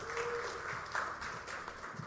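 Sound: audience clapping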